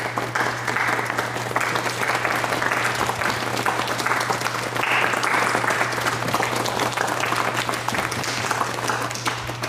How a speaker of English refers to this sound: I did give you a golf clap.